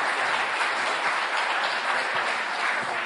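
A crowd applauds for the BC Liberals representative at an evening event, many hands clapping in a dense, even wash of sound that holds at a constant level throughout, with no voices over it.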